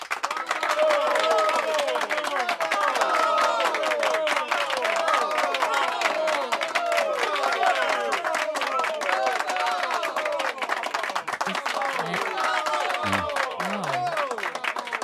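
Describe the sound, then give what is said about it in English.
A crowd at the Maha'a Bar in the Pineapple Ranch applauds steadily for the whole stretch, dense clapping with scattered voices and murmurs mixed in, holding a constant loud level without building or fading. “Forced applause for Bravo.”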